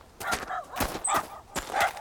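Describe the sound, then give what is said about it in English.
Guard dogs, Chihuahuas and elderly pugs, barking: a rapid series of four or five sharp, fairly loud barks, with no talking over them. “Bloody hell, he's got guard dogs!”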